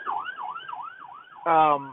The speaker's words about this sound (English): Don't mind the siren.